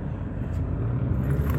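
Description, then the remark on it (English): A huge bus backing up, its deep engine rumble steady, a continuous low drone with no voices over it. “But there's a bus that is backing it. Wow, that bus is huge.”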